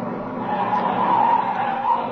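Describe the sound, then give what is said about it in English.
A sheriff's deputy's car pulls up and screeches to a stop, its tires skidding loudly in a sustained squeal over engine noise for about two seconds, with no voices. “Look at that car come up here.”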